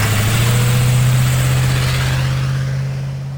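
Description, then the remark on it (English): A car engine runs steadily as a family leaves Colorado on a two-day drive back to the Midwest, a loud, even low hum with a constant drone and rough noise on top, easing slightly toward the end. No one speaks. “Then my family piled into the car and left Colorado for the two-day drive back to the Midwest.”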